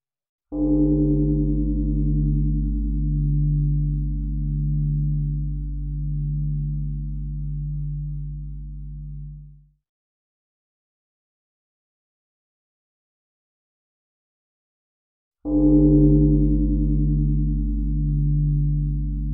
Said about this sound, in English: Before we begin, we'll listen to the sound of the bell 3 times. Just relax and enjoy. Here we go.